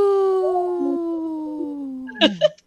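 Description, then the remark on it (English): A person imitates a wolf howl, holding one long, slowly falling tone for about two seconds, ending in a brief rough burst. Moderately loud. “that was a weak howl.”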